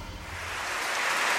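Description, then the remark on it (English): An audience in a packed house at the 6th and I Synagogue in Washington applauds Yuval at a recorded conversation, a dense steady wash of clapping that grows slightly louder and fuller over its brief length, with no voices heard. “So is this the reception you get every time around the world? Sometimes. Houses, applause.”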